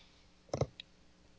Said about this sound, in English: Alien clicking. And here comes the brave Neomorph.